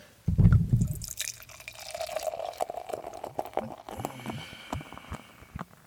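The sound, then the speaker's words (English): Liquid glugs and splashes as a 12% beer pours from a freshly opened bottle into a glass, starting with a thick burst and settling into a steady, bubbly stream with fizzing and faint clinks. “Here we go with the pour.”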